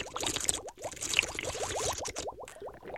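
Water being scooped from a very small oasis hidden among rocks in the desert by the Nile and gulped down in quick, rhythmic swallows, a dozen or so slurps over a steady wet, splashy background.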